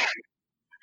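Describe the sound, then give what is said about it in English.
A short, sharp sneeze from a person with allergies bursts out, followed by a brief silence and the start of another breathy sound. “Bless you.”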